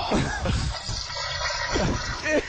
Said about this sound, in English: The end thing was the toilet flusher, but the first thing was a combination of piss and shit. I had my bladder just hotwired right to my ass, so you can hear it all start to break loose.